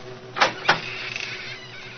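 door squeaking open

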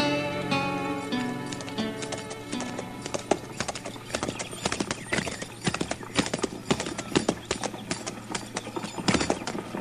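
horse

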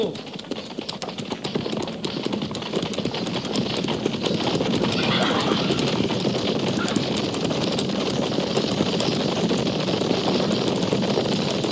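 horses galloping

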